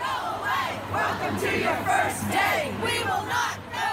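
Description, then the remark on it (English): A crowd of women gathered in the middle of streets screams "no more" together in loud, overlapping, high-pitched shouts that rise and fall in waves, continuing steadily without a break. “they had to just come out of their houses, come out of their doors, congregate in the middle of streets, and just start screaming to the heavens, no more.”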